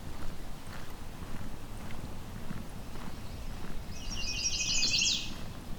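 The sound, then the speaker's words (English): A mourning warbler sings one short, rich, rolling phrase near the end, clear, in the Currie Tract, Halton region, over steady crunching footsteps of someone walking alongside a road and low outdoor rumble. “Here we go, mourning warbler.”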